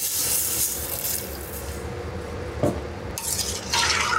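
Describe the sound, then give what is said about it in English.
A liter and a half of water pours steadily into a metal cooking pot with a bright, rushing hiss, interrupted by a brief clank of utensils before the pouring surges again. No one speaks. “So we're gonna add the water, a liter and a half of water. Ah, can you hear it?”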